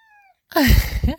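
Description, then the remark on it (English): A cat named Diego gives a faint, thin little cry, then a loud, drawn-out meow that rises and falls in pitch. No other sounds or voices. “Did you hear that? That's Diego, is the cat.”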